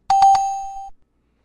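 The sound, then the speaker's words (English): A bright chime-like bell rings out three quick times in succession, then its clear tone hangs and fades over most of a second. It's fairly loud, with no voices. “We got different bells.”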